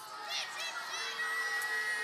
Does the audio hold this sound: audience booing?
yes